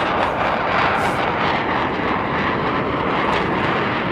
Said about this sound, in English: Blue Angels disrupted one of your interviews. This is kind of fun.